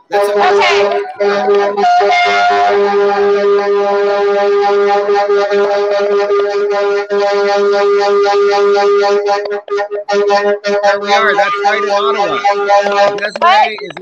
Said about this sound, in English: There was so much honking, I could hardly hear you.